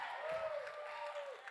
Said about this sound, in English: So let's all give a round of applause.